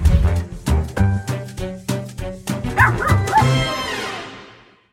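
A small dog, Charlie, barks and yips in a quick, excited series of sharp, high-pitched bursts, loud, with a couple of whiny yelps near the end before fading out.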